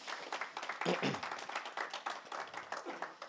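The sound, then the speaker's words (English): An audience applauds for fathers, many hands clapping in a dense, steady patter at moderate loudness, with a brief voice rising through the clapping near the start. “Let's give a round of applause for our fathers.”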